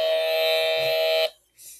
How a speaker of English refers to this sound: You know what? Just hit the buzzer.